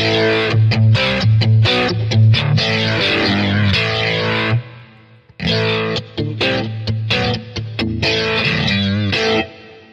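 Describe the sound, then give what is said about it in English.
A distorted electric guitar plays choppy chords and riffs through an amp alone, with no booster pedal, loud, with a brief pause midway before the crunchy playing resumes. “And of course, just with the amp too.”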